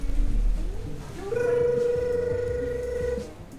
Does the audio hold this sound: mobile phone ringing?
yes